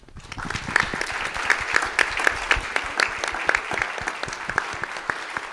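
A church crowd applauds the parents of a senior class, many hands clapping in a dense, sustained patter with a few sharper claps standing out, holding at an even, fairly loud level throughout.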